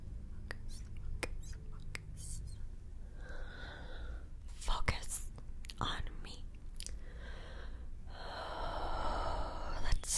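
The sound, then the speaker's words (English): Slow breaths drawn in and let out, soft airy hisses with a few small clicks and mouth sounds between them; a longer, fuller exhale swells near the end. “Some breathing. Breathe in. And out. In. And out.”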